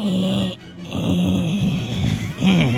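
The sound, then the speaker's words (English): A person vocally imitates a puppy as a sound effect for a spoken story, with whiny, wavering whimpers and low growly tones in several short bursts, fairly loud, with a brief pause near the middle. “It sounded kind of like a puppy.”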